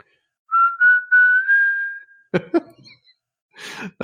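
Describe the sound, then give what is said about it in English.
Someone who cannot whistle tries to whistle a single wavering, breathy tone for about a second and a half, then breaks off into puffs of air and a short cough-like burst, fairly loud. “Penny whistle thing, but I can't whistle.”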